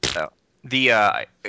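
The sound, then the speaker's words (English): A person makes fart noises with their mouth: a short buzzy burst, then a longer, louder drawn-out one, and the start of a third. “stop with the fart noises.”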